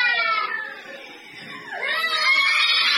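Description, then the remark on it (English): Children scream and wail in fear, high-pitched and sustained, several voices overlapping; the crying dips briefly, then a sharp rising shriek leads back into loud, continuous sobbing screams. “Yeah, as you can hear, the kids were terrified and traumatized.”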